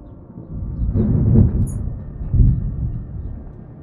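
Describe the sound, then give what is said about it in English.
A deep, muffled rushing of water heard through a door, a steady low rumble that swells twice before easing off. No one speaks. “as you put your ear up to this door, you only hear the sound of rushing water.”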